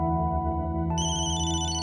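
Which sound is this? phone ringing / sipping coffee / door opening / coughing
phone ringing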